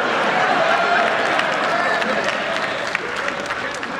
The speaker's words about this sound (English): Even the enemy's clapping for him.